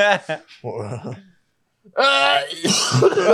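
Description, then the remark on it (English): A voice imitates coughing from the back of a store: a few rough, throaty bursts, a brief silence, then a longer, strained hacking fit with a groaning edge, fairly loud. “You hear coughing from the back of the store.”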